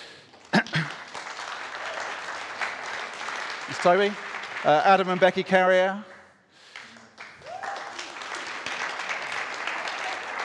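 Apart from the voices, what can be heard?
audience round of applause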